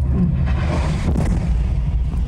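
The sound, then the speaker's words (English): A missile strike explosion, heard as a heavy, sustained low rumble with a broad roar on top that stays loud for about two seconds, with no voices. “We're warned of a missile strike incoming and leave.”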